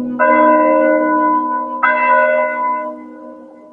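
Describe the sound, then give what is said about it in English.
A church bell tolls twice in slow succession, each loud stroke ringing out with a rich, sustained hum that overlaps the next and gradually fades. No voices are present. “The church bell would be tolling from morning to evening because of so many deaths.”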